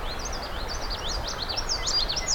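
Songs of a common yellowthroat and a song sparrow: quick, high-pitched chirping phrases that repeat throughout, fairly faint above a steady low rumble of background noise, with no voices.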